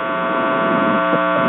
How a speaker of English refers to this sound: We can, yes, but there's a lot of static on the line. I believe that's on our end, but go ahead.